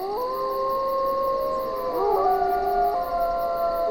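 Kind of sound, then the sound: animal, wolves howling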